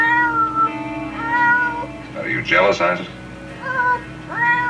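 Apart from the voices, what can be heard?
cat meowing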